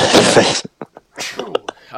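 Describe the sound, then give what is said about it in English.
A single loud, explosive sneeze bursts out at the start, then a short pause followed by a few brief clicks and quiet mumbled voice sounds. “bless you. Thanks. Just bless myself.”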